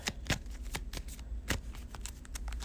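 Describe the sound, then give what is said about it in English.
A deck of cards being shuffled after the top three cards are drawn, a quick run of crisp riffling snaps and flutters repeating in uneven bursts, with no voices over it. “Let's draw the top three cards. See if I can get a spell. I got to deny existence, so that's a good thing. Shuffle that.”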